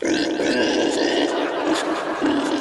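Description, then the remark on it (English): Three human voices overlap in loud, continuous animal imitations, a rough piggy grunting most prominent among mock barks and meows, droning on without pause for a couple of seconds. “Then suddenly the three individual voices began to bark, meow, and grunt.”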